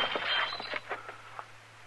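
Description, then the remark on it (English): A drinking glass is knocked out of a hand and smashes in a bright, clattering burst, followed by a few scattered tinkling clinks that fade over about two seconds. No voices. “You knocked that glass out of my hand.”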